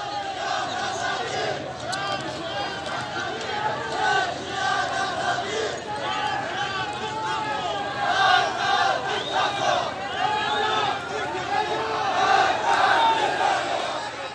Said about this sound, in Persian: در ویدئویی که از سه‌شنبه شب در سقز منتشر شده است نشان می‌دهد معترضان در این شهر بار دیگر به صورت محل محور به خیابان آمدند. معترضان با روشن کردن آتش و مسدود کردن خیابان هم صدا با هم شعار می‌دادند.